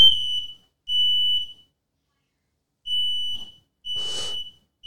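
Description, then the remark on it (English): A smoke alarm, set off by marijuana smoke, shrieks in loud, piercing bursts of about three-quarters of a second, separated by short gaps, with a brief burst of noisy rustle during the final blast. “Smoking so much dope. Got the fire alarms going.”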